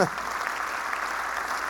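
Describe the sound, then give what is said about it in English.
A church crowd applauds steadily, a dense wash of many hands clapping at once with no distinct individual claps, holding at an even loudness for the whole short stretch. “Yep, you can clap at that.”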